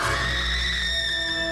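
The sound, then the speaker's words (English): A voice imitates a woman's scream: one loud, shrill, sustained cry held steadily for about a second and a half, with no talking. “And that's what she'll do. She'll scream.”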